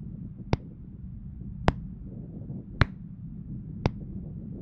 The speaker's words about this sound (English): I don't think you're supposed to slow clap with a concussion. Don't care. Doing it anyway.